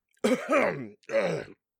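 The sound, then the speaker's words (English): Inside a spaceship, a woman hacks and clears her throat in two strained, raspy bursts, coughing something up from the back of her throat, fairly loud with a brief pause between them. “Inside the spaceship, sitting across from Jerry, his wife screams for a solid minute, and then finally coughs something up from the back of her throat.”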